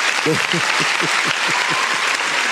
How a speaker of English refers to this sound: I'm going to give the Laker fans a round of applause out there, man.